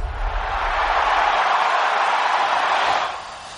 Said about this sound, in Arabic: حطينا لك صوت الجمهور كابتن حمد ها؟ زين كويس عشان تعيش أجواء الجماهير لما كنت في الملعب.